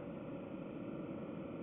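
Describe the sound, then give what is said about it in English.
A deep, steady exhaust rumble from a motorcycle being ridden drones on continuously at an even level, low and throaty, with no voices over it. “So my favorite thing about the sound of the exhaust is like that very, very deep rumbly sound.”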